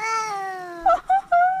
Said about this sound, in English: What? Is that you in the... I hope that's you in the background. That's not me in the background. That's not you? I was Googling cats talking, and then this was something that I found.